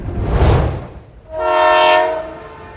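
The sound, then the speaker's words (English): A train rumbles loudly past for a moment, then its horn sounds a single sustained, chord-like blast lasting about a second and a half, with no talking. “Wow, look, trains, steamboats.”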